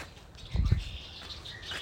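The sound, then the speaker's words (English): Faint birds chirping on a March morning, a thin scatter of high tweets running throughout, with a brief low thump partway through and no one talking. “the birds are chirping.”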